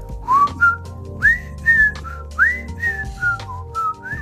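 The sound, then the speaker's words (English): A person whistles a bright, rising and falling tune of several short phrases at the cash-out counter of a small truck stop casino to get the attention of staff, fairly loud, with faint background hum and no talking. “Take some tapping on the counter and whistling.”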